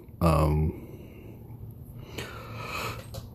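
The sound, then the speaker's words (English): A short, loud, voiced yawn bursts out, then fades into a quiet, breathy exhale a moment later. “Sorry about that. Literally to be yawning already.”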